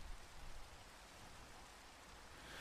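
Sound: rain falling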